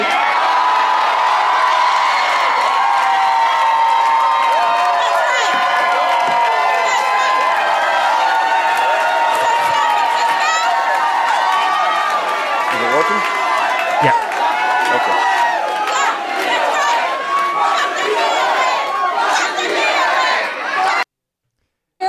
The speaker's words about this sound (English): She got up and immediately, you know, the first thing that she says is she just screams, "I have one thing to say, fuck the POA," and everybody starts chanting, and it becomes this big, you know, flashpoint